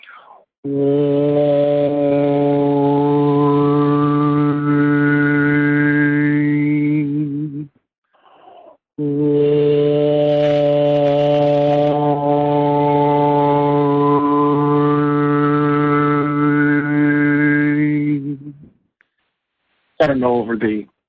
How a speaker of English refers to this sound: Of the combination of the phone and the airwaves, whether you can hear those subtle overtones in there, but they're actually quite beautiful, and they're not difficult to make, and you can actually do them when you're humming too.